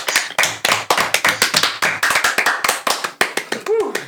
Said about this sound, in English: Best sign off ever. Stop clapping.